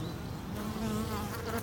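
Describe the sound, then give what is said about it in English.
Bees buzz steadily among flower beds in a city park on a sunny day, a continuous low droning hum with slight shifts in pitch as they move, recorded outdoors with no voices. “I can hear some buzzing bees in those flowers.”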